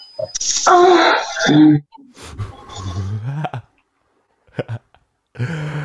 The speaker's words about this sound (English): I tried to make him cough, but he didn't. Yeah, there it is. Got him.